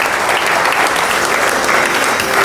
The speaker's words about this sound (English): How about a round of applause for the panel?